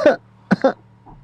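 A person coughs three times: one sharp cough, a brief pause, then a quick double cough, followed by a faint rasp of breath.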